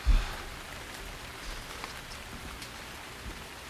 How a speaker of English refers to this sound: Ah, it's kind of nice hearing the rain through these glassless windows at this monastery.